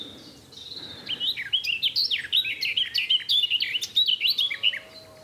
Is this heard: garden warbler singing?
yes